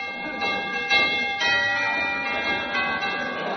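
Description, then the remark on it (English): A doorbell chimes with a few overlapping ringing tones that strike in quick succession and linger, fairly loud, with no voices present. “I'll ring the doorbell.”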